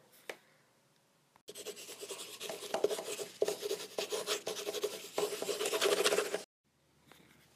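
A pencil scratches and rubs across paper in continuous drawing strokes for about five seconds, with a soft tap at the start and quiet pauses before and after. No one speaks.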